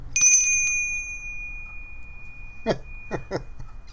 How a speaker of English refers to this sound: That bell is clear, like a clarion call. Clear as a bell. So if that little tiny bell got a crack in it, would that screw that up like big bells?